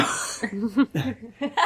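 A short, rough burp with a low, croaky, voiced rumble that breaks into a few uneven bursts, following a brief breathy noise at the start.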